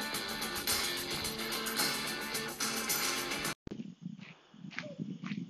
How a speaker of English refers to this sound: So, sorry if you hear footsteps. That is actually me. I'm currently walking at a park nearby our apartment. It's called Kings Park. And they have a beautiful outer loop.